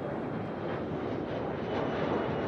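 A steady airplane engine drones on with a dense, even roar that swells slightly near the end. No voices.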